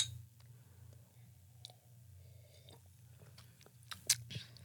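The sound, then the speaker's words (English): Soft wet mouth clicks and sipping noises over a low hum, followed near the end by a single bright, ringing clink of glasses touching as two people toast with a drink. “Why should I be drinking this? I don't know. It's sour. I'm assuming. I didn't just spill it. Okay, ready? Cheers. Cheers.”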